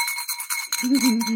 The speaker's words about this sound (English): So S is spirits everywhere. That's why I have my apotropaic bell.